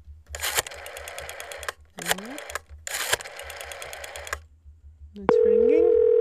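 A telephone number is dialed on a phone in several buzzy, clicking bursts with short pauses between them, then a steady ringing tone starts and holds to the end, fairly loud.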